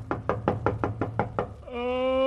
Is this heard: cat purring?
no